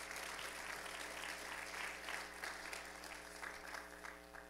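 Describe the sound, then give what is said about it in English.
A crowd applauds steadily for several seconds as people leave the stage, a dense wash of many hands clapping, with no voices standing out above it. “I clap for them as they go.”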